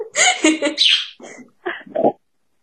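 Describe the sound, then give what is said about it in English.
A pet bird chirps and chatters in a few quick, raspy bursts, with short pauses between the calls and no other sounds around it. “Bird talks. Oh my god!”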